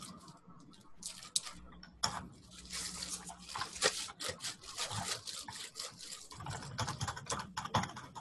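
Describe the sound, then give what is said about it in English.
Rapid, continuous clicking of keys on a computer keyboard, fairly quiet, with an irregular rhythm of quick bursts and brief pauses throughout and no speech. “That will also, you know, don't need to worry about typing out a private message as well, which someone was going to get a response to.”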